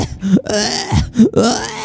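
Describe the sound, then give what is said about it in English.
A voice imitates the character Wednesday gasping and choking as she dies, in strained bursts: rising groaning pitches broken by short breathy gaps, loud and up front with no other sounds around it. “Wednesday gasping and choking.”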